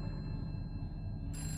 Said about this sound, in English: The phone rang, but nobody answered it.